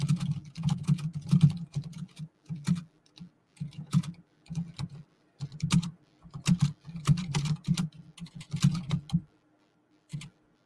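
Rapid computer keyboard typing in bursts of quick clicks and taps, fairly clear, with brief pauses between runs and a final few keystrokes after a short gap. No one speaks.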